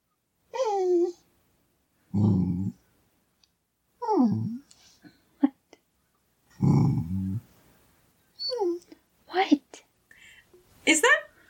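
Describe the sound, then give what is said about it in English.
Penny, a female dog kept out of a closet, whimpers and whines in rising, wavering cries, alternating with low, rough snoring grumbles, about a dozen short bursts separated by brief pauses, with a few sharp clicks between them. “She keeps coming into my room and trying to get into the closet, and she's making noises at me because I won't let her in the closet.”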